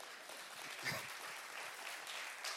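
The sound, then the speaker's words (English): A crowd applauds steadily, a dense wash of many hands clapping at once, sustained and fairly loud throughout with no talking over it. “You can clap.”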